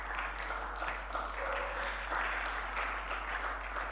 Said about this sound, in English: Thank you for the half-hearted clap. At least you're clapping.